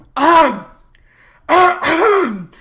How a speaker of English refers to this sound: Enter Merriman. When he enters, he coughs loudly, seeing the situation.